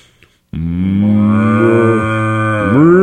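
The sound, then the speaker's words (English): A cow lets out a single long, loud moo that starts abruptly, holds steady for a couple of seconds, then rises in pitch at the end. “Oh, it's cow.”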